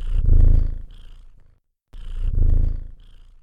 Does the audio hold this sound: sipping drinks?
no